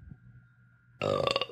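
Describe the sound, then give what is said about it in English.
A single loud, deep belch bursts out after a quiet moment with a faint steady hum, rumbling and gurgling for about half a second before cutting off. “That was just one belch.”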